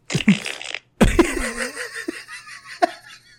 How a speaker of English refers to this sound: And then when he does the machine gun thing and the pyro, it's just a bunch of farts.